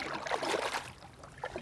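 Water splashes and gurgles as a canoe glides along the shallow Sturba River across the Livanska Poya on a guided canoe tour, with a soft rushing wash and a few small dripping bursts, moderately loud and steady throughout.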